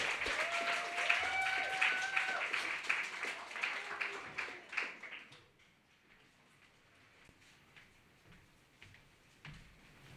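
An audience applauds as the next poetry reader is introduced, with a dense burst of clapping and some whooping for about five seconds, then it thins to a few scattered claps that trail off.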